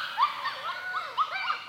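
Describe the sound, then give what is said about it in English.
Four young red wolf pups whimper and yip in a busy overlapping chorus of high, squeaky, rising and falling cries, continuous with no talking, at Land Between the Lakes National Recreation Area. “12-year-old Jasper defied expectations to become the oldest breeding red wolf on record. He and mate Ember are parents to 4 bouncing baby pups”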